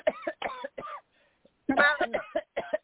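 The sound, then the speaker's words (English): A harsh run of coughs after a deep breath during a prayer: three quick hacks, a short pause, then a louder, rougher burst of several more coughs in quick succession. “Take a deep breath and cough that spirit out in Jesus' name.”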